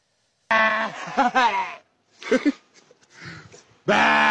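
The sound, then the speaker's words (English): A sheep bleats loudly in long, quavering, almost human-sounding cries, with a couple of shorter, quieter bleats in between before another strong call starts at the end. “That sheep sounds like a person imitating a sheep.”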